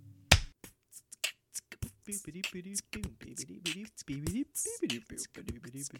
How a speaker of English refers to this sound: Do you want to do the clap? Yeah, let's do the clap. So on three. One, two, three.